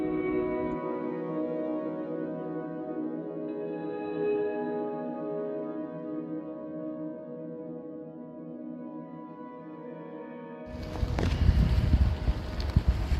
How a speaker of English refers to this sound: On today's episode, I get very wet and it's very windy, but I get the best autumn shot I think I'll have got this year.